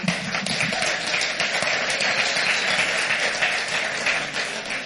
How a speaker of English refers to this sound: All right. If you would, give our worship team a hand clap.